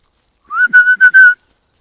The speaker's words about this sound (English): I'm to whistle him back. He'll come eventually.